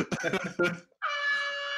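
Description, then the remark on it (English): A brief burst of speech gives way to a single loud, sustained air horn blast lasting close to a second, steady and brassy with a sharp onset. “Yeah, that deserved an air horn, that one, didn't it?”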